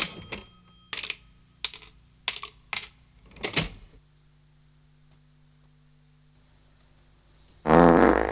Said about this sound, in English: Oh, charming. Charming. Oh, that wasn't me. It was my fart.